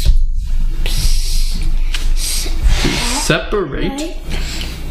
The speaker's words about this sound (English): can you blow your nose over there, please? Thank you.